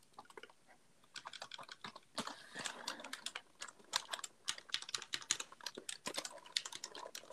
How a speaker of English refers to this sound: I'm now completely absorbing and clicking my keyboard. There could be something going wrong with my computer right now, so I'm just clicking my keyboard.